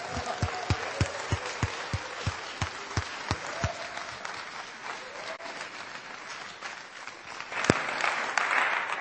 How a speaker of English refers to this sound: So having not seen him for some time, I feel it would be appropriate to give him a massive round of applause and say, welcome back,